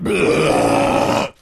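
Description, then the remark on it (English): A single long, loud belch into a microphone as a mic test, rumbling steadily for over a second before cutting off abruptly into near silence. “Belch.”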